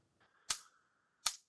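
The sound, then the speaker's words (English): An electric fly swatter paddle zaps a wasp that landed right on it: two sharp, loud crackling snaps about three-quarters of a second apart, with a faint thin buzz running between them and no talking. “Man, he landed right on my electric paddle.”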